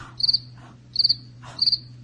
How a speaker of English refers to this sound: What is it? What do you mean, what is it? No, what is it? Those are crickets. Oh, it's a cricket.